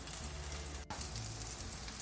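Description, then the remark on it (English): A steady, dense hiss and crackle of croquettes frying in sizzling oil in a skillet, spaced apart and fried about 3 minutes per side, runs throughout, with a brief break partway through and no voices. “So before the break, we place our croquettes into our pan with the sizzling oil.”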